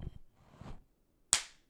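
One sharp, loud hand clap cracks out after some soft muffled rustling, its bright snap trailing off in a brief fading ring. Nobody speaks. The clap is made to demonstrate how sound travels, as in echolocation.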